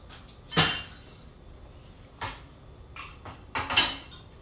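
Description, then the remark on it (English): Dishes clatter and clink as a dishwasher is loaded, with several sharp bright impacts spaced irregularly, a loud knock near the start and a cluster of ringing clinks toward the end. “We're on the dishwasher, eh?”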